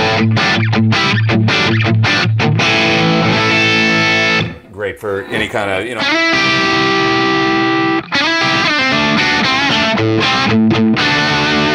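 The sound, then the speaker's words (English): Loud, crunchy distorted electric guitar through a greenback-loaded 4x12 cabinet sound with a blend of a 57 and a 121 microphone, on channel 2 of an HX Effects unit, playing chords and sustained notes with a thick, saturated tone, a brief pause midway where a voice speaks, then the heavy guitar resumes. “This is now a green back loaded 412 with a blend of a 57 and a 121 on it.”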